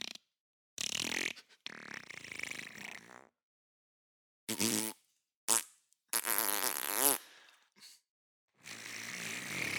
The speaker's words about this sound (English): Sensual farts.